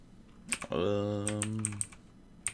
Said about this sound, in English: Excuse my typing.